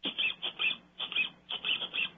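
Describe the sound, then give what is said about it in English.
A rubber duck, played as a radio show sound effect, squeaks rapidly about nine times in quick bouncy pairs, each squeak a shrill, high-pitched toot. No voices are heard. “A rubber duck is funny, like ducks are funny.”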